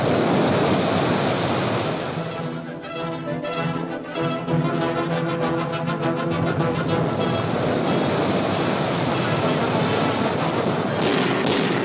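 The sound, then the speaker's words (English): Depth charges dropped by an American destroyer attacking a diving Nazi submarine explode underwater in a loud, continuous roar of churning water, with a rapid burst of muffled concussive thuds midway and a deep rumble throughout. “Depth charges are dropped in a deadly pattern.”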